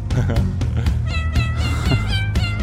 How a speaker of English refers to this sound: There's my cat.